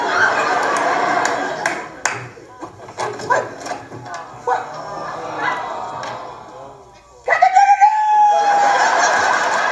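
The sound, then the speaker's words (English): A person imitates a pigeon with a string of short, throaty clucks and coos, then ends with a louder, drawn-out rising call. “Now, could you do a pigeon so I could run you over with my car?”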